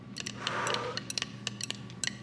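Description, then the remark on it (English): Dice rattle and tumble during a board game, a brief clattering shake followed by a string of sharp, irregular clicks as they bounce and settle; the roll comes up a 3. The clicks are crisp and fairly quiet, with no voices. “I'm going to roll the dice.”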